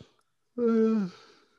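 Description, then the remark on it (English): A single yawn straight into the microphone while leaning back, voiced and breathy, swelling quickly then sliding downward in pitch before trailing off into a soft exhale, with brief quiet before it. “I'm straight up yawning into the mic.”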